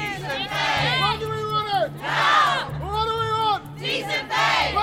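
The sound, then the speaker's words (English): A crowd of about 20 Royal College of Nursing members chants at a picket line outside Guy's Hospital in central London, in -4 temperatures. Loud, rhythmic bursts, several voices rising and falling together in repeated call-like phrases over a steady low hum, with short pauses between each shouted line. “And they're expecting many more this lunchtime at this picket outside Guy's Hospital.”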